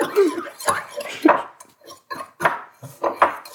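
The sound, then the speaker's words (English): A whisk beats against the sides of a bowl of chocolate mixture that is turning into a brown liquid, giving a run of quick, uneven clinks and scrapes over a few seconds. “Whisk, whisk, whisk, whisk. This is turning into a weird brown liquid.”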